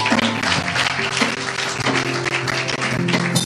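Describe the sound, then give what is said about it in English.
A church audience claps in praise to God after a prayer, a steady, dense wash of applause that holds loudly from start to finish, with a low musical tone humming underneath and no one speaking. “Everybody give God a hand clap of praise.”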